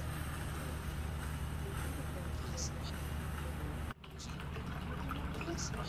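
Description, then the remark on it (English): Water trickles steadily from a small water fountain at home, switched on at bedtime, a continuous splashing wash over a low mechanical hum, with a brief dip near the end before the flow carries on. “He likes this water fountain”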